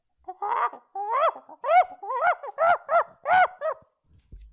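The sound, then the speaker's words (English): A person imitates an angry monkey with a quick run of about eight loud, hooting cries, each swooping up and down in pitch, with no words spoken. “Your monkey sounds mad.”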